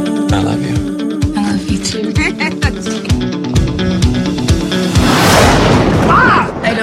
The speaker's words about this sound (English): Oh, 35 man. Years old, and you're still scared of a little thunder.